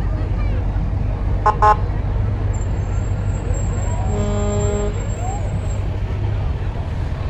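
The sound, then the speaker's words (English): Engine 1409 of the Jackson Fire Department, passing in a parade, gives two quick horn toots, then a longer, deep blaring air-horn blast, over a steady low engine rumble and a thin high-pitched whine. “Engine 1409 from the Jackson Fire Department making its way through.”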